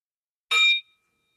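A single bright metallic ding, like a small bell struck once, rings clearly with shimmering overtones and fades quickly into silence. No voices accompany it.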